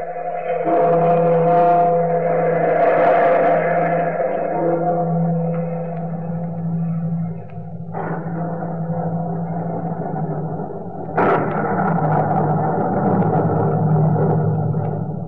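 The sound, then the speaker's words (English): Sustained dramatic music with low droning tones, interrupted by two sudden crashes of thunder that rumble and fade beneath the score, with no voices. “you who seek the wisdom of the universe beyond the time of man, look to the lightning and the thunder.”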